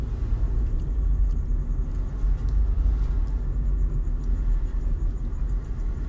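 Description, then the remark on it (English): Steady low-frequency rumble inside a sister's car while driving, a continuous deep drone with faint high ticks and rattles above it, no voices present. “I'm driving my sister Jenny's car right now.”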